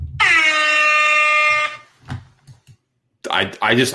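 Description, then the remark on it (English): A loud, sustained air horn alarm sound effect holds one brassy, harmonically rich pitch for about a second and a half, then cuts off; scattered noises follow, and a man starts talking near the end. “Sound the goddamn alarm, dude, because it is people's main event.”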